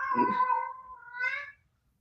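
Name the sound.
cat meowing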